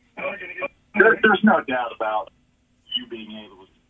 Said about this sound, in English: What happened there? I don't know. You got some feedback loop on your phone, but yeah, go ahead.